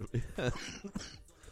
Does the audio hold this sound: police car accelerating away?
no